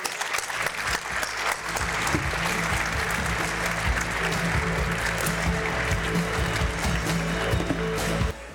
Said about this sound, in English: Can I get another round of applause for our all-star panel? Liven it up, people. There we go.